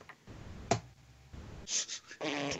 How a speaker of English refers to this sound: Okay, like, I'm rolling two more dice here.